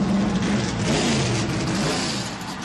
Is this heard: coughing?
no